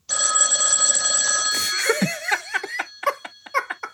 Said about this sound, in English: Pick it up. Answer it. Oh, baby, just ignore that phone call, baby.